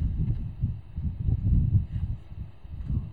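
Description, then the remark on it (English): A strong, very cold breeze blows steadily through a cave as a deep, buffeting rumble that swells and eases in uneven gusts, with no voices. “There's like a strong, very cold breeze going through there.”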